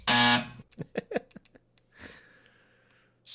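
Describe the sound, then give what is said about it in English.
A loud, harsh wrong-answer buzzer blares once for about half a second, thick and raspy, then quieter voice sounds and breathing follow. “Wait, you're giving me a big giant X?”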